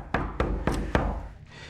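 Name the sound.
knocking on a door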